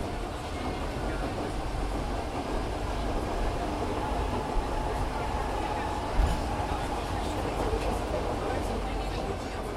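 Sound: subway train riding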